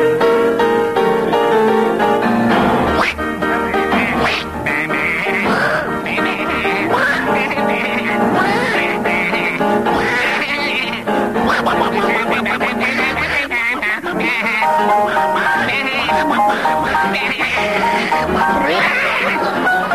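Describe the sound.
Two voices perform a lively tune entirely in animal noises, one quacking like a duck and the other bleating like a sheep, loud and close, with piano accompaniment throughout.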